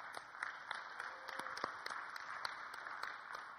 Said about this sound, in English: Well, give Jesus a big hand.